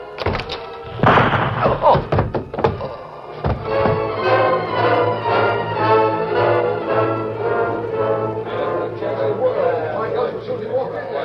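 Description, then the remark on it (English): A few dull knocks as a man knocks the ashes out of his pipe against the heel of his boot in front of a small house, then a door opening, followed by steady talking that fills the rest. “Then he knocked out the ashes against the heel of his boot, studied the sky a moment, and opened the door.”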